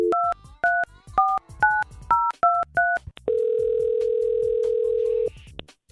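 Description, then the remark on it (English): A quick run of about seven touch-tone keypad beeps is punched in to call a trip giveaway winner, followed by a steady, unbroken phone tone that holds for about two seconds. The sounds are clear, with no talking. “If you entered a keyword even once to this, you better be by your phone because we're calling right now.”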